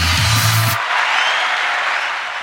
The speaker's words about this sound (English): A beautiful applause. It's the only button I know, fool.